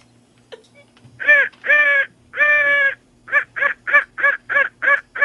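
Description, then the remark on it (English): A person imitates a crow, giving a series of loud, harsh caws: three drawn-out calls followed by a quicker run of about eight short, rhythmic caws. “And my crow would be...”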